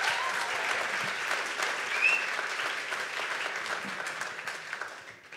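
An audience claps steadily for a man about to share his story, a dense, sustained patter of many hands at an even level that starts to taper off toward the end.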